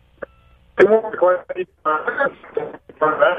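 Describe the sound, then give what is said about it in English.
A caller's voice comes through a bad phone line, thin and band-limited, breaking into choppy, garbled bursts with short dropouts, so the speech is hard to make out. “we got some phone issues, brother.”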